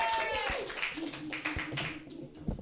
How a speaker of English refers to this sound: That is an appropriate amount of clapping.